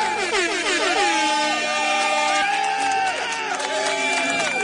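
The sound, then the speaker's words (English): Loud, sustained air horn blasts overlap one another for several seconds, their pitch bending and wavering, with a crowd's noise faintly underneath. “I don't know if an air horn is appropriate for a funeral, is it?”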